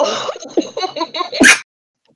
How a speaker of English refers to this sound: Oh. Bless you.